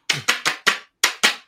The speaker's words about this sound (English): And that is, great, get rid of the clappers. I mean, we can't get rid of these, can we?